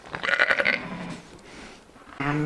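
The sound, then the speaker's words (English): A newborn lamb, born that morning on the Comiskey farm at the start of lambing season, bleats twice, a high, quavering cry, then a pause filled with soft background noise before a second, louder wavering bleat. “This wee fellow was born this morning. Back on the Comiskey farm, the lambing season is kicking off.”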